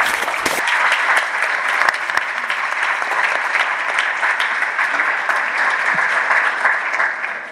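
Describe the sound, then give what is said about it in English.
Steady applause from an audience welcoming a panelist at a panel event, a dense wash of clapping that holds at an even, fairly loud level for several seconds before tapering slightly at the end. “I would like to welcome Griselda to the panel. Thank you. Round of applause.”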